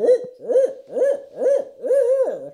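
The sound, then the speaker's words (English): A man imitates an owl, voicing five rhythmic hooting calls in quick succession, the last one drawn out a bit longer, clear with no other sounds. “You got to hit us with your owl.”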